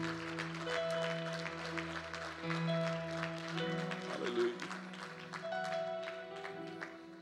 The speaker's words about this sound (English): Why don't we clap to him one more time before we're seated?